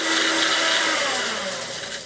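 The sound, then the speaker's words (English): A blender roars loudly and steadily for almost 30 seconds, its harsh motor whine grinding super-dry pieces of placenta into powder, with a gritty, rattling texture throughout and no voices. “Amethyst puts the bits in a blender. Okay, it's gonna get real loud.”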